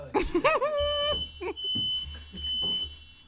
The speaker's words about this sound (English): Somebody fan the alarm. Sound the alarm. No, fan. Fan the alarm.